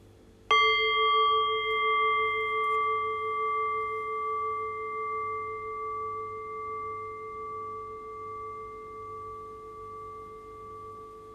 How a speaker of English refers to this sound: And in a few moments' time, then I'll ring the bell. The invitation here is to rest awareness on the decay of the bell. Allow the fading bell to guide your awareness into silence.